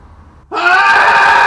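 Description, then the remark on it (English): After a brief quiet moment and a three count, several voices break into a loud, sustained cathartic scream together, a dense and unbroken wail that holds steady at full volume to the end. “So let's go, we, me, they, let's go ahead and scream together.”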